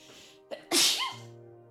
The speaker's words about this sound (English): I'm going to sneeze. Sorry.